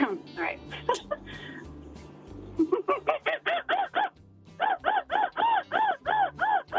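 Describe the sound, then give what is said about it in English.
A person vocally imitates a clucking chicken, then breaks into a rapid run of loud, rhythmic screecher-monkey screeches, each a sharp rising-falling whoop. “I could do a chicken and a monkey.”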